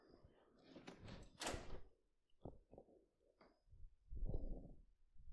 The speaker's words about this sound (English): Oh, frick. That was too loud. The door slammed against the wall. Because I kind of opened it and stepped back.